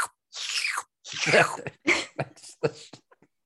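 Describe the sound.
A voice makes wet, slurping mouth noises in a series of sputtering bursts, imitating the slurpy call of a Chupacabra, with a gurgly, breathy texture that trails off into a few short smacks.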